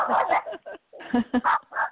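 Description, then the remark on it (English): A dog barks repeatedly in quick, uneven, loud bursts, with short gaps between the yaps over a couple of seconds. “Oops, there's a doggy.”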